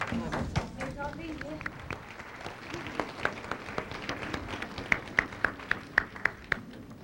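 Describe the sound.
An audience applauds as Master Qinghai arrives, with dense, crackling clapping that thins into steady, evenly spaced claps toward the end. Faint voices can be heard early on.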